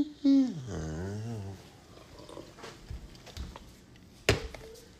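A dog gives a single long, wavering whine that rises and falls in pitch, fairly loud, followed by faint rustling and one sharp knock near the end.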